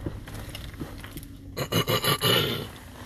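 After a second and a half of near silence, someone clears their throat in four or five harsh, raspy bursts that come in a quick, rhythmic run, fairly loud and with no talking.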